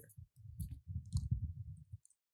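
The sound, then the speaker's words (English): Keys are pulled from a pocket: low rustling and fumbling, with a few brief, bright metallic jingles scattered over about two seconds. “Let me just pull out my keys.”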